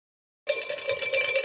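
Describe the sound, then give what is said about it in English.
After a moment of silence, a bright bell rings out suddenly, rung twice, sustaining with shimmering, high metallic overtones and a steady loudness, with no voices. “It's Two Bell Tuesday.”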